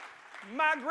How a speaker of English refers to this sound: Come on, clap your hands and shout hallelujah.